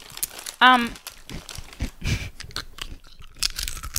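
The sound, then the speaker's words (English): Someone munches crunchy chips, one of them triangle-shaped, with several sharp, noisy crunching bursts and some crinkling in the middle, after a short voiced sound near the start. “Let's start the after show off with some chips.”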